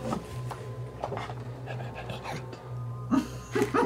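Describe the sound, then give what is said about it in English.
A dog pants in quick, breathy bursts that come in an uneven rhythm and grow louder near the end, over a steady low electrical hum. “really tried to do something with this dog.”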